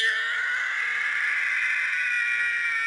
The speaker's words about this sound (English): Not quite as famous, but it's called the Howie Scream because of Howie Long's role in Broken Arrow. Even though it doesn't originate there, this is the one that made it big. So this is what is known as the Howie Scream.